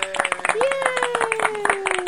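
A short round of applause: quick, irregular handclaps from a few people for about two seconds, with a long held vocal cheer that rises, then slowly sinks in pitch over the clapping.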